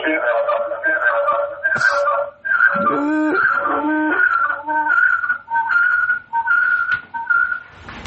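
An incoming-call ringtone on an Alexa Dot smart speaker plays a looping electronic melody of bright, clear tones in short repeated phrases. It keeps ringing steadily for several seconds after the phone has been picked up, with no one talking.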